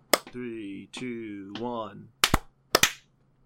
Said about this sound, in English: We're going to do a 3-2-1 clap. Y'all ready? Yep. Do it twice. Bum, bum, bum, bum. 3-2-1.